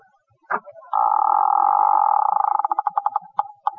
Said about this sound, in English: Well, it's now 3 o'clock in the morning at the home of George Kingfish Stevens. It's pitch dark in the living room as the front door slowly opens.